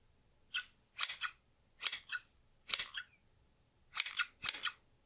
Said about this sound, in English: She did hear it. She sat up, tense, alert, listening. The sound of scissors cutting briskly through fabric was quite distinct.